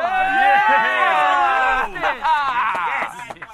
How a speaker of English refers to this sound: The crowd's going buck wild.